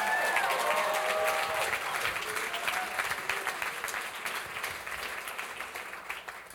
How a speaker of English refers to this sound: Give her a hand clap.